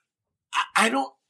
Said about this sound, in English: It's like you broke down in the middle of, bless you. I'm in the middle of sneezing.